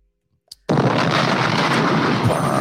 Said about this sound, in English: Bombs.